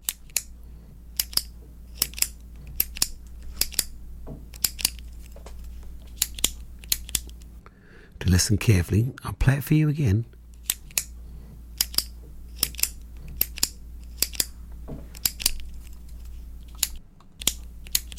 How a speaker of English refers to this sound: That was a clicking pen. When you click, when you want the pen to work, we push on the top. A clicking pen.